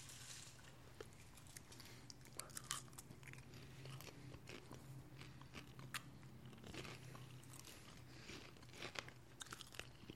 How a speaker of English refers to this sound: This popcorn was money. I hope you guys watching and listening along at home are having some popcorn. Yeah, to cover up so the sound of you chewing is covering up the sound of us chewing.